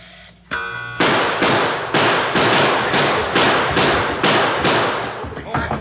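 gunshots

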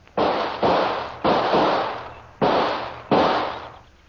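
gunshot

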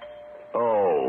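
doorbell ringing

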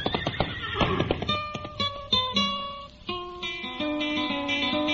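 horse neighing

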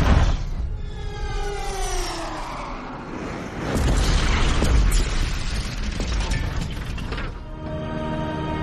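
explosion

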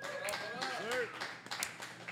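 audience applause and clapping

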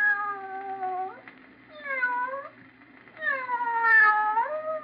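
cat meowing sound effect

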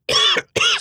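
sneeze

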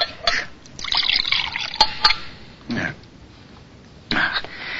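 water poured

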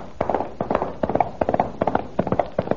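horse hooves clip-clopping

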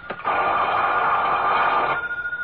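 telephone ringing

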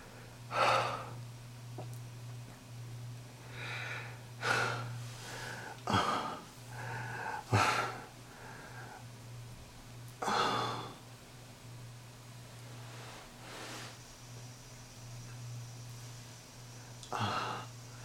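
deep breathing

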